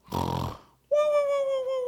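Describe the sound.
Someone imitates a snore for a doctor at a sleep test, in the manner of the Three Stooges: a short, raspy snorting inhale, a brief pause, then a steady, high whistling exhale in a comical cartoon style.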